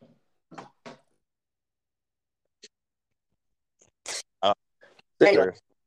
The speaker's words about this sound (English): Let me run outside real quick. I'm sure the listeners are going to enjoy this. Hearing the door close.